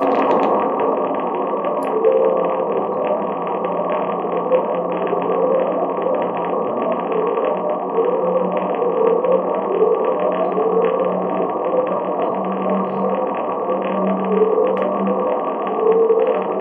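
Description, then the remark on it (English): The Pacific Ocean upsweep: a steady, rumbling underwater drone with a string of repeating low tones that each slide upward in pitch, giving an eerie, siren-like wail throughout, with no voices. “So this is the upsweep.”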